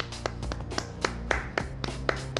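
A single person claps about nine times at a slightly uneven pace, sharp crisp slaps over a steady low tonal hum in the background, applauding the Milwaukee Bucks for winning the title.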